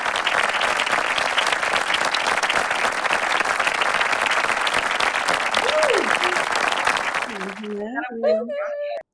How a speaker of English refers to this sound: So claps for them. Thank you, ladies.